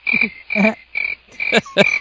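Nighttime nature ambience: a steady, high cricket chirping runs under a series of loud, rhythmic croaking bursts, like frogs calling, with no voices.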